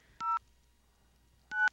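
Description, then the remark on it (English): Two short, bright dialing tones, each a steady dual-pitched beep, separated by a pause of about a second, as a telephone number is keyed in over a quiet low hum. “Let me try this line here.”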